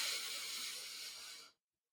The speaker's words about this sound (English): let's do a quick breathing. Let's do some quick breathing real quick. In through the nose.